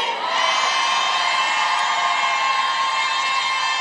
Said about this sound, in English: In Jesus' name I pray. And everybody screamed, amen.